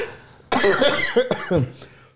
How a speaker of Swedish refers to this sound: Nu börjar han igen. Förlåt, men det är alltid när vi närmar oss 20 avsnitt på säsongen som hostan kommer.